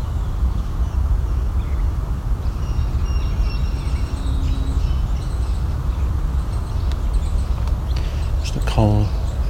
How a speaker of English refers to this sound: American Red Start, one of the rattle calls. The song of the Red Start in the background.